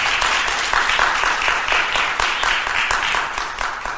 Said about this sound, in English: Let's give another round of applause for Joseph's message.